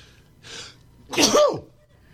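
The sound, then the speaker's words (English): A short, breathy intake of air followed by a single loud sneeze that bursts out and trails off quickly, with no talking around it. “I'm going to have three or four more.”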